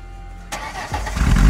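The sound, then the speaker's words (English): A car engine cranks and catches after a short quiet stretch, then the low rumble builds and grows louder as the car speeds off out of the car park of the Bangsa shopping complex in Kuala Lumpur, with no voices present. “He then got into the driver's seat and sped off, crashing through the car park barriers on the way out.”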